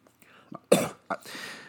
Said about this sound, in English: Sorry, could you hand me another cup of water through the podcast feed? I'm getting the cough.